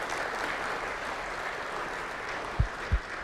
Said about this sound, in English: In fact, let's just give a little applause for that, if you would.